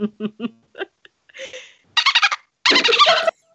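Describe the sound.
A person imitates a dolphin: a few short squeaky chirps, then two bursts of rapid, high-pitched pulsing chatter, fairly loud, with no talking.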